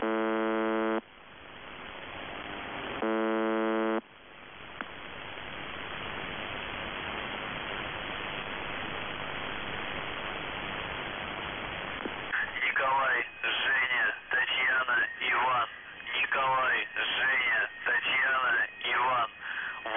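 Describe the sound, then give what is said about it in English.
Two short, harsh buzzes from the shortwave radio station UVB-76 blare out, then give way to a long stretch of steady static hiss before a warbling, garbled voice-like signal emerges through the noise. “Here's a sample of the buzzing.”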